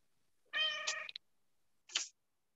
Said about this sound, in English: I love the cat meow at the end. That's gonna go. The cat agreed with him. All right. That talks a lot. Gotta love a talkative cat.